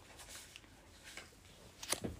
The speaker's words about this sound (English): I have to shuffle it in two sections because there's so many of these cards. All right, just a couple more, last shuffle.